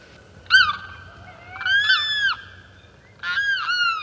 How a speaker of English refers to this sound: Most fascinating of all the sounds that come from the larger southern swamplands are the weird cries of the Lemkins. Perhaps they have given rise to some of the superstitions that haunt our fast-disappearing marshes.